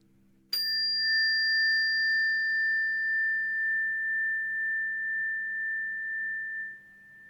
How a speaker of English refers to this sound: And we can listen to the sound of the bell to close this meditation.